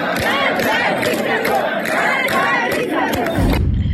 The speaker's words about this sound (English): Talking about young people, this new generation, I saw a stunning video of a group of young people shouting death to the dictator.